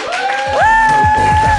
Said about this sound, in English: Is anyone, everyone just, you just want to clap wildly?